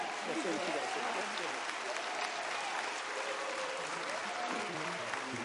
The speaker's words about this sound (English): And I want you to give these two ladies a round of applause.